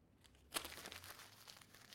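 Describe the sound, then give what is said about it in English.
Paper being crumpled up by hand: a sharp crackle, then a steady stretch of dry crinkling and rustling. Fairly quiet, with no talking. “Look, when you finish with something, look, when I finish with this piece of paper, you know what I do?”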